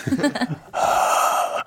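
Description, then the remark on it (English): Exaggerated heavy breathing: a few short voiced huffs, then one long, loud, raspy breath held for nearly a second before cutting off abruptly. “I was trying to do some heavy breathing.”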